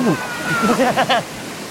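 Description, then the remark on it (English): Steady rushing, sloshing water of the twisting New River fills the background while people paddling down it let out short excited exclamations, fairly loud. “… and I were off, down the twisting, gurgling water of the New River”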